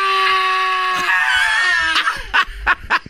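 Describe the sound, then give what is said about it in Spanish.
A loud, exaggerated wail holds for about two seconds, slowly sinking in pitch, then breaks into choppy, sobbing bursts, with no talking. “Deja de estar llorando así porque te pego más tarde y ya no tienes garganta.”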